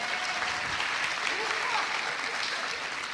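A group of people clap steadily for about three seconds, a dense, even patter of many hands with no voices rising above it.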